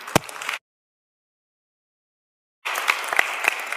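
An audience gives a round of applause: a brief burst of dense clapping, a sudden silence of about two seconds, then steady, crackling clapping with sharp individual claps that runs to the end.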